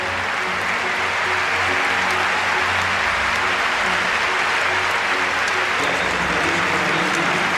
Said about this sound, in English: The applause swelling throughout Olympic Stadium as Redmond, with assistance this time, approaches the finish line he had wanted so desperately to reach.